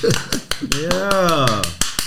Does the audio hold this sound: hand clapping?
yes